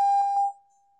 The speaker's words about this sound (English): So their name, I'm so sorry about the bells, their name, their email address, their phone number, however it is you contact them, basketball.